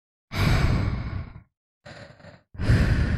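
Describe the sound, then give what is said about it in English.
A voice imitates the slow, heavy mouth breathing of a masked killer: a long rasping exhale, a softer short breath, then another loud drawn-out breath, with brief silent gaps in between and no talking. “He just breathes. He's just around. Heavily. So he's just breathing,”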